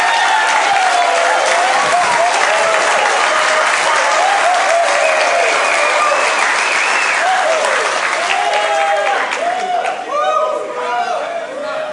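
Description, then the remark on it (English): A large audience stands and applauds to welcome an executive pastor, with scattered cheers and whoops rising above the clapping, sustained and loud for the whole stretch, tapering slightly near the end. “It makes you guys all cheer.”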